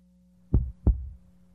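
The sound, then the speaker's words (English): A single heartbeat sound effect: two deep, booming thumps in quick lub-dub succession, loud, over a faint steady electronic hum. “That one's just called Heartbeat.”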